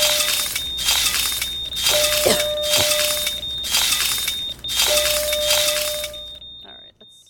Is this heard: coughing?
no